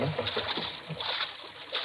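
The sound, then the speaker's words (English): A small boat moves steadily along a river, kept in close to the bank while searching for a mine entrance, its hull hissing and washing through the water in a continuous rush, with faint muffled voices beneath. “I'm keeping the boat in as close as I can”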